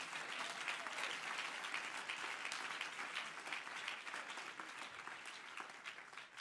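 An audience claps their hands unto Jesus in sustained, dense applause, a steady wash of many overlapping claps at an even loudness with no voices standing out.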